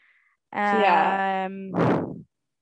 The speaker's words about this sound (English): Okay, you gotta don't go so close to the mic because your breathing is very, you can hear like your breathing. Talk normally.